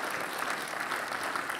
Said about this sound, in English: And when you think about that, give the Lord a big round of applause for that. That's awesome.